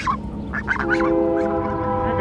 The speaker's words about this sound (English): Are these your geese? Those are real geese? Yeah. Hey, babies! She feeds them out of her hand. No, don't mess with that water. Come here, babies.